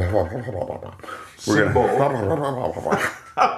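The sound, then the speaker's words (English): A person vocally imitates an underwater hippopotamus: a wobbling, gargly series of throaty, bubbling groans, rising and falling in pitch, loud and continuous for several seconds with a short burst at the end. “That is, by the way, the sound that my friend at work decided that hippopotamuses make when they're under the water.”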